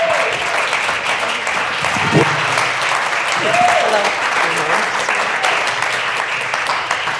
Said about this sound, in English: And we want to give them a big round of applause for their elections.